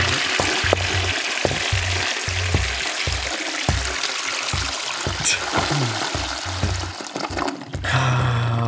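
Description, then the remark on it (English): A toilet flushes loudly, a rushing, gurgling swirl of water with bursts of low churning that ends in a steady hiss as the tank refills. No voices. “Well, I did not listen to this song while driving anywhere, so it gets the flush.”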